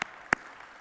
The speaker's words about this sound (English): Someone clapped. I think we can all clap. That's exciting.